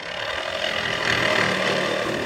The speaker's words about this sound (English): At a boatyard near the Mexican border, a worker slices through the fiberglass hull of a captured smuggling boat. The word Ensenada, the port city in Baja California, is printed on it in hand-drawn letters.